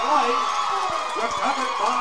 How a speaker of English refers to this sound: Arundel Parrott Academy, you hear the fans cheering over here at Faith Christian, as well they should.